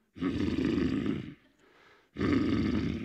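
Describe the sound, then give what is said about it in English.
A voice imitates a deep, rough animal grunt in two long bursts, loud and growling, separated by a brief quieter rumbling breath, like a cow grunting at night; it imitates a sound heard at night from a tent while camping, thought to be a Highland cow on the hills. “It's probably just a Highland cow somewhere on the hills.”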